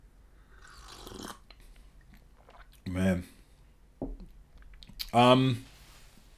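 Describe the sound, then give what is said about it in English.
Wet chewing and crunching sounds from someone eating, with a few short bursts of a man's voice breaking in between the mouthfuls. “Every time we fucking eat this, you say that, you know?”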